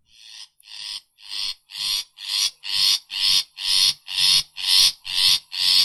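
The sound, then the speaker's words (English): A long-tailed shrike gives a rapid series of about a dozen harsh, raspy calls in a steady rhythm, each a short grating burst, growing louder as the sequence goes on. No one speaks. “Let us also hear the long-tailed shrike calls.”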